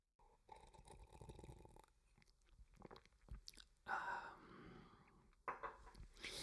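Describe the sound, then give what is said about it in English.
Quiet mouth sounds of someone sipping a turmeric drink, with soft slurps and swallows followed by a breathy exhale, no talking. “In fact, I'm going to take a sip right now.”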